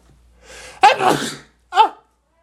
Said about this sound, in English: Hold up. Gotta sneeze real quick.